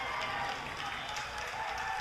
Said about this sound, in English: And you can hear the crowd here at Dish Falk Field being energized by that last two or three minutes of intense back and forth, shall we say.